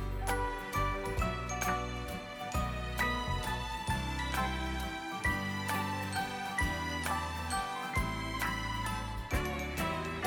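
A Christmas song's instrumental intro: bright jingling bells shake in a steady rhythm over a full band with bass and a clear melody, continuous and fairly loud, with no singing yet.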